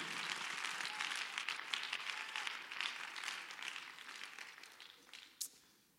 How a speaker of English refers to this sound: Somebody shout amen. Clap your hands as loud as you can.